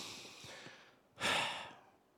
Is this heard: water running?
no